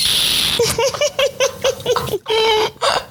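A water bottle squeaks in a quick run of about eight short, chirping squeals, then holds a longer sustained whine before a final squeak. It's a bright, warbling sound, almost like a parrot.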